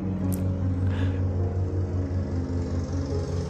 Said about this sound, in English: Oh, as you listen to the sound of the lawnmower outside in my lawn, we pray that you have a far more ecological afternoon than I'm currently having, and that you lead your ways into new grief and kinship with the world.